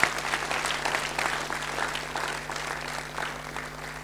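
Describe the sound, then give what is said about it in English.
An audience stands and applauds a speech by the first lady, many hands clapping in a dense, continuous wash that holds at a fairly even level throughout, with a faint low hum underneath and no talking. “Come on, let's stand together and just applaud that speech from the first lady.”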